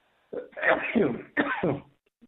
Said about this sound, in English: Sorry, I had to sneeze.